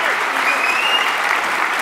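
A crowd claps steadily in sustained, dense applause for Gary Vaynerchuk as his session closes. It stays loud and even throughout, with no voices standing out.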